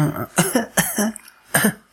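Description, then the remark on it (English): A person fakes a series of coughs, three quick harsh bursts followed by a pause and one more, fairly loud with no talking. “No, but he's got to be coughing. He's got to be this.”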